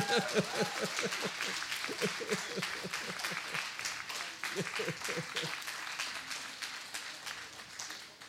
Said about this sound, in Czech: Přátelé, ale já myslím, že potlesk sluší i tlumočníkům do znakové řeči, teda slemovou.